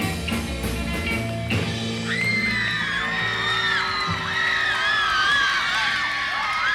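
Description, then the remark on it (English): A crowd of British teenage fans screams continuously in reaction to a male singer at a concert, high-pitched shrieks rising and overlapping over faint music, loud and sustained throughout with no break. “Screaming British teeny boppers reacting to … in a song called …”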